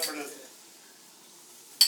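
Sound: glasses clinking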